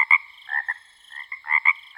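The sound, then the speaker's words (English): A mockingbird mimicking frog croaks, with a quick series of nasal, throaty croaking notes in short irregular bursts, clear, with nothing else in the background. “Their nighttime medley might include the songs of blackbirds, cardinals, house wrens, hawks, and even the sound of frogs.”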